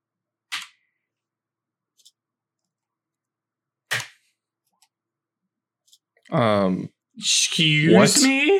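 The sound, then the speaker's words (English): Two short, sharp clattering knocks of dice rolled onto a table for a persuasion roll, a few seconds apart. Voices then start talking loudly near the end. “Serious enough to roll some social dice for it.”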